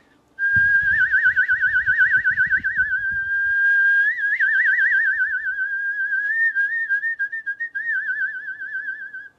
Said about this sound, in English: If you move your tongue up and down, you can get a trill of vibrato, and that's really fun to try. I'll show you. I'll start straight, and then I'll make it wavy.